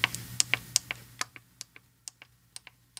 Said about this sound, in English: Just because it's a digital pressure cooker, you need not be afraid of it. There are square push buttons, great big push buttons that you can feel, and I'll let you hear these push buttons.